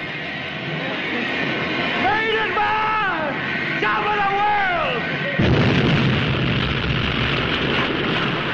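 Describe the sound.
A voice shouts over a noisy background, then a sudden loud explosion bursts in and continues as a sustained, roaring rumble of blast and fire for the last few seconds: the flaming explosion in the film White Heat in which James Cagney's character Cody Jarrett dies.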